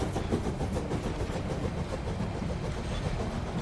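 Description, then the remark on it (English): A steam train starts and pulls away from a platform, rumbling and rattling steadily, a dense, continuous clatter of moving carriages with no voices, holding an even loudness throughout. “The rest of the parting was lost in a whisper and in the rattling lurch of the train starting.”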